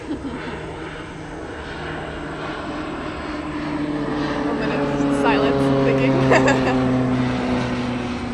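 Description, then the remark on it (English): A propeller plane drones overhead in quiet countryside, its engine hum growing gradually louder with steady tonal harmonics that bend slightly as it passes, a continuous moderately loud rumble. “Oh, now we have a plane going over.”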